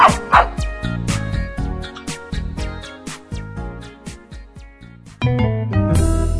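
A dog barks in short, rhythmic yaps over bright background music, the barks fairly loud, with a fuller musical swell near the end.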